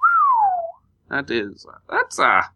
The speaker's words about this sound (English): he's pretty taken aback by this feat of architecture. I mean, he knew, they'd sort of heard that it was underground, but he lets out a whistle.